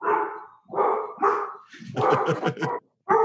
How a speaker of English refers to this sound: Okay, so the dog's barking doorbell, that's just like a school interruption right there, listeners.